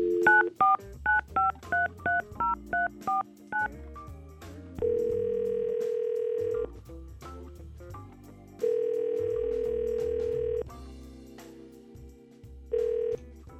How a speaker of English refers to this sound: We're going to try to call Cassandra right now and get her on the phone.